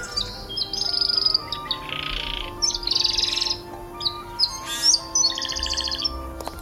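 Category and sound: bird, bird chirping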